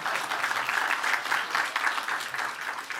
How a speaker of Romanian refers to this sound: Acum aș vrea să-mi mai aplaudați odată.